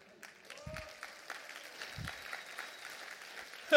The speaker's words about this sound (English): Yeah, you clap.